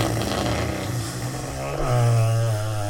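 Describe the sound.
A long, buzzy mouth-made fart noise blown into a microphone, a low flapping rasp that holds steady for about three seconds, then swells louder and slightly higher toward the end.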